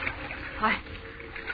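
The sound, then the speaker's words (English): Water splashes and sloshes steadily for a moment, a continuous churning with a slightly stronger surge near the middle, as something comes through the water. “Coming through the water.”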